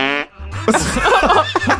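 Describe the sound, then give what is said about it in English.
A loud fart: a short squeaky tone, a brief pause, then a long wet, sputtering blast that flutters and rasps for over a second, with no voices. “I'm saying fart, sadly.”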